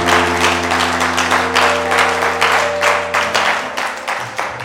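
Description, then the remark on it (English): A church audience claps for Jesus, loudly and steadily, many hands blending into a dense, continuous patter, with a sustained low musical drone humming underneath throughout. “If you know the King that we serve and you have to clap for him, you clap with all your might and with all your strength.”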